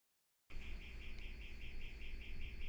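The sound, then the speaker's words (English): A gate alarm chirps in a fast, steady series of short high-pitched beeps, about four per second, over a constant low rumbling background with no one talking. “I think that's our gate alarm.”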